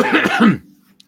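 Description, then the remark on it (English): A single harsh cough lasting about half a second, rough and breathy with a throaty, voiced edge, trailing off into a faint low hum and a tiny click. “It makes you want to hear the coughing one, too.”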